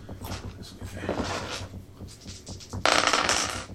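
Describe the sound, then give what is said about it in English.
Dice clatter across a hard tabletop, with scattered light clicks at first, then a louder, denser rattle near the end. Fairly crisp over a low background hum. “Oh, I should have stuck with the other dice.”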